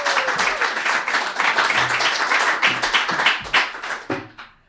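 A crowd breaks into steady applause, many overlapping claps forming a dense, bright wash that holds for a few seconds, then thins into scattered claps and fades out.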